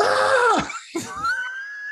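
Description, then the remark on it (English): A voice imitates a child's fake scream: a loud, shrill, drawn-out yell that swoops down, breaks briefly, then rises into a sustained high wail, alone. “So I was like, he would like come near me, like walk past me, and I'd start screaming, ah!”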